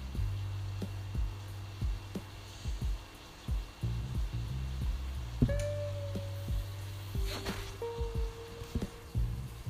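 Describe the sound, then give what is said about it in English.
A steady, soft sizzling hiss of onions and garlic frying in a pan, with scattered small pops and crackles, a constant low humming drone underneath and a couple of brief high squeaks. “Starting to hear a little bit of a sizzle here.”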